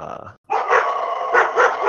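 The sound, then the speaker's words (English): Several dogs bark and growl in a loud, agitated burst, with repeated harsh barks layered over a continuous snarling rumble after a brief pause. “Some crazy dogs.”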